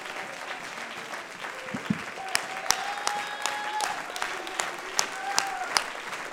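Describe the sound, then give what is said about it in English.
A crowd applauds with steady, dense clapping, a few sharper claps popping out above the mass, and faint voices and cheers mixed underneath. “But still, why don't you clap your hands and let your babies know, let those that are excited about it know, I got it settled for me.”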